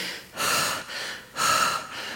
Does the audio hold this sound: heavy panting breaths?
yes